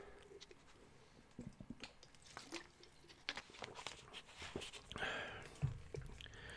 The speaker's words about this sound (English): Take a drink of water here.